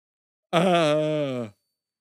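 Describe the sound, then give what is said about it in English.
A single loud yawn into a microphone lasting about a second, voiced and breathy, with the pitch sliding downward into a groaning sigh before it stops abruptly. “Sorry, I'm yawning real big into the mic.”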